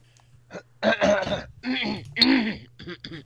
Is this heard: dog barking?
no